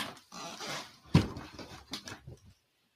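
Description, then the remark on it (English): A female dog whimpers and whines to be let inside, in a few short, breathy bursts, with a sharper thump partway through, then the sounds trail off into silence. No one speaks. “oh, my dog wants to come in.”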